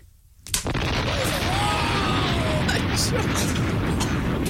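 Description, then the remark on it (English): After a moment of quiet, three devil bang snappers are set off at once, live on the Capital Breakfast radio show, going off together in one sharp, loud crack, followed by a steady wash of noise and voices. “He's doing three devil bangs at once, live on the radio.”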